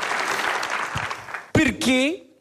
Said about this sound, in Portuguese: Palmas